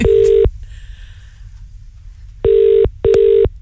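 A telephone ringing tone over the line as a radio show phones Killy Neely Christmas Trees, loud, in the classic repeating double-ring pattern: a burst, a pause, then two quick rings. Faint beeps sit in the pause, and nobody speaks.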